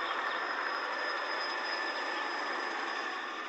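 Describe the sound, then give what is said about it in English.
A helicopter drones steadily overhead, flying back and forth while spraying a clear cut fairly near a hunting spot: a continuous loud rushing roar with a thin high-pitched turbine whine running through it, unchanging throughout and with no voices. “So that helicopter was spraying the clear cut that was fairly near where I was hunting.”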